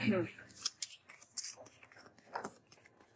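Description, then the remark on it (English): Cards being shuffled, heard as a few quiet, crisp papery snaps and riffling bursts spread unevenly over a few seconds, with faint breathy sounds in between. “Okay, I'm just doing my last shuffle.”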